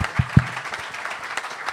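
A short burst of crowd applause, many hands clapping in a dense, crackling wash, opening with a couple of louder low thumps before settling into steady clapping.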